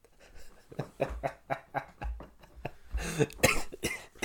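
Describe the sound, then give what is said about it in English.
A loud fit of coughing, a rapid run of harsh bursts one after another, with a heavier, raspier cluster of coughs toward the end. No talking. “Excuse the coughs.”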